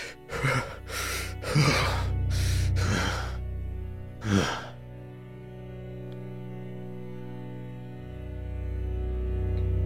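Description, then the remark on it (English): Heavy, ragged breathing of a man: about six loud, gasping breaths in quick succession, then it trails off into a low, steady hum with no more breaths. “And he's just breathing heavily.”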